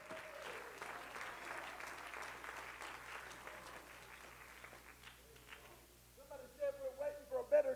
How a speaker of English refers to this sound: Oh, my Lord, I feel the Holy Ghost tonight. Hallelujah. Anybody else feel the Holy Ghost? Clap your hands to the Lord.